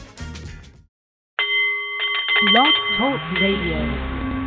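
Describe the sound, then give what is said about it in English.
A Nepalese meditation bowl rings out with a single strike, its steady shimmering tone sustaining loudly while a voice begins talking over the lingering resonance. “The Nepalese Meditation Bowl is chiming, centering your mind and delight on the art of the CEO”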